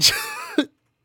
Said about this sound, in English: I'm awake. Just yawning.